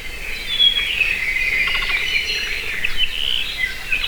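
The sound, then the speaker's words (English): A rare Hawaiian forest bird of the high-elevation koa forests on the Big Island sings in a series of thin, high whistled notes and trills over a steady, hissing bed of insect-like buzzing, with no voices present. “In addition to controlling mosquitoes, planting koa forests would be a great way to increase populations of this very rare and important species.”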